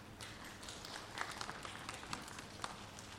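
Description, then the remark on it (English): A round of applause from a group for someone receiving an attendance award: many overlapping claps in a steady, scattered patter, fairly soft throughout, with a few sharper claps standing out and no one speaking. “come on up and give her a round of applause.”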